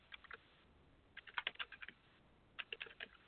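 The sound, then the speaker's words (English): Quiet keyboard typing in short bursts of rapid clicks, separated by brief pauses, heard alone with no voices over a Skype call. “I can hear somebody typing, but I can't.”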